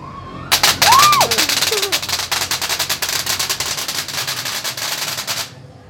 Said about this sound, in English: An air cannon. Oh, an air cannon.